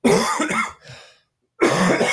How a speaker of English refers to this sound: You've got to leave those coughs in